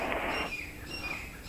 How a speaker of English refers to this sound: And I'm in the jungle, you know, so you can hear these birds chirping. We're in an open studio, so it's not closed up. Listen.